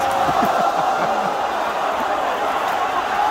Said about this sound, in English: The crowd. Married men and their wives all chanting.